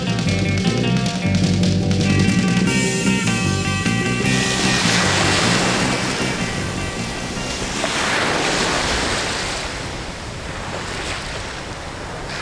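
Steady, rushing surf from breaking waves at the Bondi Beach seawall in Australia fills the air, with gusty wind buffeting the microphone; a faint musical tone fades out in the first few seconds, leaving the continuous wash of the sea.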